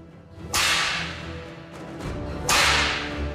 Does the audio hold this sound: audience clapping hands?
no